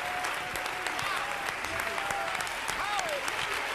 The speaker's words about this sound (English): So we need to be stirred. Come on, let's clap a little louder. Let's get with it.